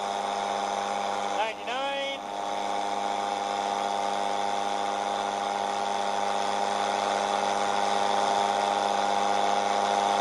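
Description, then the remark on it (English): A paramotor engine drones steadily with a high, buzzing whine as the paramotor climbs toward 17,000 feet. The pitch briefly dips and sweeps up near the start, then holds an even, continuous tone throughout. “Dude flies 1,500 feet. I'm sorry, 17,000 feet in that paramotor chair.”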